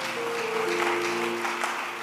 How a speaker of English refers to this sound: Give the Lord and celebrate God with a good clap offering.